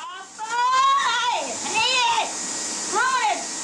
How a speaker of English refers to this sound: That's an old school vacuum cleaner. Like a small spaceship. That is not a great sound for a podcast, is it? The sound of a vacuum cleaner.